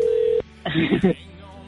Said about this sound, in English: Well, we're just going to get the phone to ring out here first. It's going to ring here. Come on.